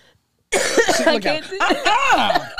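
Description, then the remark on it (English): A loud burst of rough, rattling coughing from a woman that starts abruptly after a brief silence, tangled with voiced throat sounds and strained vocal noise for about two seconds. “Y'all tell her to stop coughing.”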